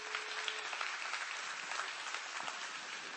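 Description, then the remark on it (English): A crowd claps steadily for a young boy as he comes up to the front, a dense wash of many hands at moderate volume, sustained for a few seconds without anyone speaking over it. “Y'all give him a hand clap while he comes.”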